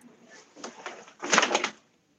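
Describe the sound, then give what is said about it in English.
A door is pushed shut, with a couple of soft scraping knocks building to a louder rattling thud that cuts off into quiet. “Sorry, I had to close the door.”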